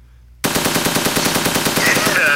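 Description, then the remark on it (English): Loud machine gun fire bursts in abruptly after a brief silence, a rapid, steady rattle of shots that keeps going without pause until the end, with no talking. “Where my chopper?”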